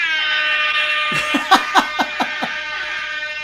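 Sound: air horn blast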